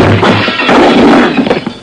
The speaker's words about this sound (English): I knocked him back against his glassware, strode out of there feeling a little better and a lot puzzled.